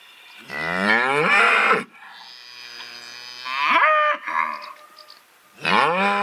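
A cow moos loudly, letting out several long, drawn-out calls with softer lowing in between, and no one speaks.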